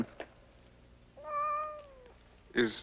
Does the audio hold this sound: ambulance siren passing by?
no